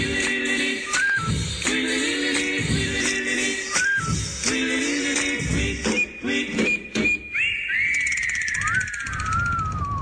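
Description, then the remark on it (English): A person whistles a bright melody over upbeat music playing in the background, the whistled notes sliding downward near the end. “Gee, I can whistle still.”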